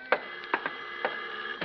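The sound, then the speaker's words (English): An apartment door buzzer, rung late at night by a woman visitor, drones in a steady, harmonic-rich tone, broken by several sharp, irregular clicks or knocks. No voices are heard. “I went in the back way via the fire escape and arrived in time to answer her buzz.”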